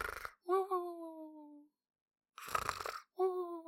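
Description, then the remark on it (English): A voice imitates little squirrels snoring at night in a forest story: two cycles, each a rough, noisy snort followed by a thin, high-pitched whistling exhale that slides gently downward. “So he hears little squirrels snoring.”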